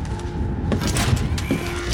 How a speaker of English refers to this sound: Close the door.